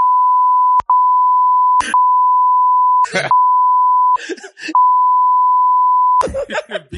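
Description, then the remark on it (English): A loud, steady censor bleep drones almost continuously, broken by a few brief gaps where short bursts of a voice slip through between the tones. “Beep it out.”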